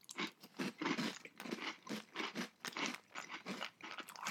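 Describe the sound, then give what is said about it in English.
Loud crunching of crunchy, blue raspberry flavored fruity cereal being chewed, a steady rhythm of roughly ten bites over a few seconds, with no talking. “The texture, that crunch is Trix-like. It's a good crunch, too.”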